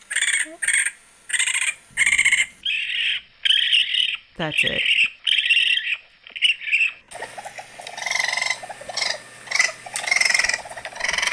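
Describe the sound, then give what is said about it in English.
A raccoon gives a rapid series of shrill, raspy screeches in short repeated bursts, followed by a longer, denser stretch of harsh squealing calls. A brief spoken remark comes in partway through. “Now I really want to look up a raccoon scream.”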